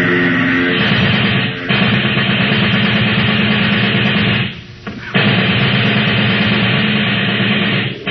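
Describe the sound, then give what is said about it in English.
Loud, rapid submachine gun fire aimed at the propeller of a plane taking off blends into the steady roar of the plane's engine, with two brief lulls before the dense, rattling noise resumes. No one speaks. “Get out the submachine gun.”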